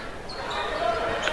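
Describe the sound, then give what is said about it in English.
A basketball bouncing on a hardwood court in the third quarter of a Slicers game, as Mookie Ward bounces it toward Devon Parker on the left wing, amid steady arena noise, with a few brief high squeaks layered over the constant background hum. “Now Mookie Ward in the middle, bounces it toward Devon Parker on the left wing.”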